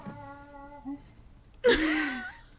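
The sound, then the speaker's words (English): A squeaky toy gives a thin, steady whistling squeal, pauses briefly, then lets out a louder, harsher, rasping squeak that trails off after a second, as dogs, one of them named Cooper, play with squeaky toys. “I just know that you guys can hear my dogs just playing. The squeaky toys, it kills me.”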